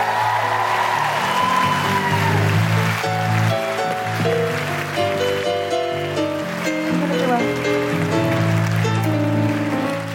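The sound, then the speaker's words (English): Loud, steady applause from a large audience fills the whole stretch, a dense wash of clapping with cheering voices and a band playing underneath. “Big round of applause”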